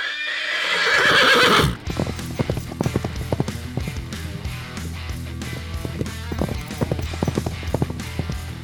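A sweating horse, shouted at on a hot July day, lets out a loud, shrill whinny, then its hooves clip-clop away in a quick, steady, clear rhythm as it runs off.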